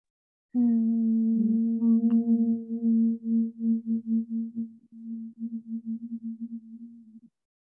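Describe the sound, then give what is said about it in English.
A single long, steady hum held on one low pitch for about seven seconds, clear, made by a person breathing out through the mouth with pursed lips after breathing in through the nose, its loudness pulsing and wavering toward the end as the breath runs out. “So it's in through your nose, and then you're breathing out, making that kind of sound, humming sound, because your lips are pursed together.”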